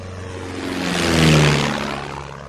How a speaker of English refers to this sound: I rushed it through in a few months, got my private pilot license, and I bought this Tiger Moth.